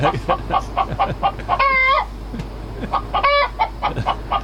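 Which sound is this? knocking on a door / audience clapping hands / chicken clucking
chicken clucking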